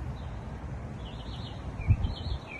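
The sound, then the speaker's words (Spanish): Small birds sing in faint, high, wavering chirps and warbles that run through the whole moment over a low, steady rumble, with a few soft thumps near the end. No one speaks. “Escucha a los pajaritos cantando, contentos.”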